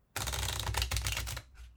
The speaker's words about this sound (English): That's fucking playing cards. Oh, I'm just shuffling.